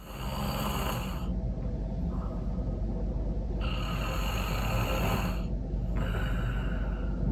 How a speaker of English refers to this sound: But literally this is what happened, and I'm gonna, can we include some of your snoring footage that in the would pod be funny.